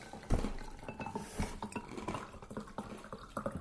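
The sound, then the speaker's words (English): Wine glasses are set down on a hard surface with a couple of sharp clinks followed by lighter, irregular taps and knocks, over a faint steady background hiss with no talking. “Let me get some glass. Okay. So here's a glass for you. Here's a glass for me.”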